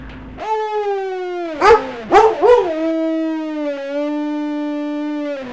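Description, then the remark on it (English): A dog named Brundle, prompted in a recording studio, howls in one long, loud, sustained howl, its pitch wavering and breaking into a few yelping warbles midway before settling into a steady drawn-out tone. “Should I get him to howl real quick?”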